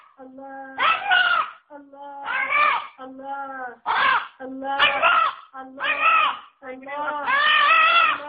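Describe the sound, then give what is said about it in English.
A chicken, performing a pet trick, squawks loudly in a rapid run of about seven harsh, strained bursts that sound like "Allah", each one rising and falling in pitch with only brief gaps between them. “Well, he's nailed the Allahu, mainly because that seems to be close to a general chicken squawk.”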